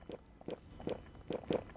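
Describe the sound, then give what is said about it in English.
A series of about five wet gulps of water taken right into a microphone, each a short throaty swallow with a slight click, coming at an uneven rhythm with quiet pauses between and no talking. “So give me a fresh gulp right into that mic.”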